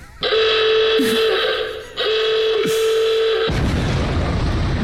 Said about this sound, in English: There is a timer. Don't know how long's on the timer when it runs out. If you haven't said stop and the timer goes off, you lose everything. Everything. You'll know the timer is up because you'll hear this noise. This noise.